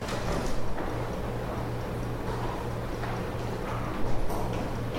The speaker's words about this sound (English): I just heard footsteps coming down the stairs.